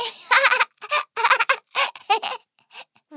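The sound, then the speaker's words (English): A voice imitates a duck at bath time, wearing a yellow rubber ducky on the head, giving a quick run of nasal, harmonic quacks in short bursts. It is fairly loud, followed by a couple of softer, fainter quacks. “Look, this is my little ducky crown. Quack, quack.”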